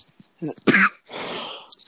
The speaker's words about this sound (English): Please take something for that cough. Yeah, have some tea or get a cough drop.